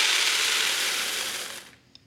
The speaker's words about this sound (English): So anyways, I've got this filled with a bunch of Reese pieces. How many like Reese pieces? Like Reese pieces? Okay. All right, so what I'm going to do is I'm going to pour these Reese pieces into this bucket.